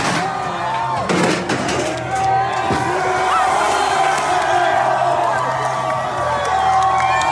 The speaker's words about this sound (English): While the rallies there were mostly peaceful, it was a different story in the UK, where an angry crowd in Bristol ripped down a statue of a slave trader and threw it into the river.